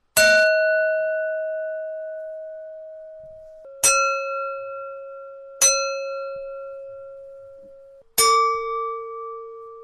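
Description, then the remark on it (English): A drinking glass bought at the Salvation Army is struck four times, each strike ringing at its resonant frequency in a clear, sustained tone that slowly fades. The first three share a similar pitch and the last rings slightly lower. No voices. “No, it's the resonant frequency of that particular glass that I got from the Salvation Army yesterday for the purpose of this podcast, silly.”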